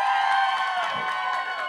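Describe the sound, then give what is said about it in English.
A crowd cheers and applauds in a dense, continuous roar of clapping and high voices, steady and loud throughout the short burst with no speech above it, as the audience votes by applause for the answer "cruise". “And who thinks it's a cruise?”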